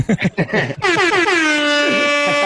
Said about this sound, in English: Give yourself an air horn.